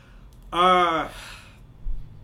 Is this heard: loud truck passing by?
no